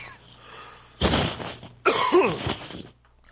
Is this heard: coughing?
yes